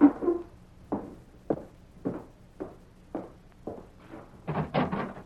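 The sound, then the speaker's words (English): A slow, steady series of dull thuds on the wooden door of a frame house in town, evenly spaced, ending in a louder, busier clatter like the door being handled. “You're the only fella new enough in town to knock on the door before coming in.”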